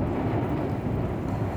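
A heavy storm during Hurricane Zeta roars steadily, with dense rain and a deep rumble of hurricane wind and thunder filling the background, loud and constant with no voices.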